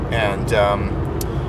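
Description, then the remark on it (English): Steady low rumble of road noise inside a moving car, constant and fairly loud throughout, with a brief voiced sound rising over it near the start. “So this has been really an interesting drive, I must say. It's been pretty clear with the traffic.”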